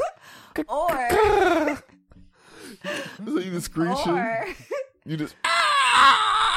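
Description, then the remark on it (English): A voice imitates a pterodactyl's scream, letting out a run of loud, high-pitched shrieks that swoop up and down in pitch, ending in a harsher, raspy screech. “Pterodactyl screaming.”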